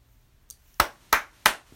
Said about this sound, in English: And clap and say thank you, thank you, thank you, thank you